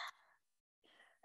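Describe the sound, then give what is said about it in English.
A single breathy sneeze bursts out sharply, followed by airy exhaling, a brief silence, and another short rush of breath. No one speaks. “Bless you.”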